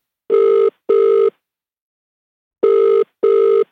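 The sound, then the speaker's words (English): An outgoing telephone call ringing: two pairs of steady electronic ring tones, each pair a quick double burst, separated by a pause of silence. Clear and fairly loud, with no voices. “I'm going to get him on the phone”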